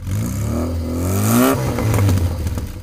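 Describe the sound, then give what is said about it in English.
Steady, loud road roar inside a moving car on a motorway, with a low engine drone that rises in pitch as it speeds up; continuous throughout, no voices. “It was just we went on the motorway and the road noise was a lot louder.”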